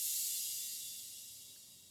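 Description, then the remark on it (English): A crash cymbal rings out as a bright, hissy shimmer, slowly fading in volume over a couple of seconds with no talking. “And then this crash, this was actually the last sound I put together.”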